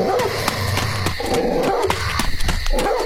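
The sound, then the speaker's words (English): A big white dog barks loudly and repeatedly in quick, sharp, aggressive bursts, with growly rumbling between the barks and no speech, as it chases a fleeing man. “With an earth-shattering series of barks, the white dog pursued the fleeing man with supernatural speed.”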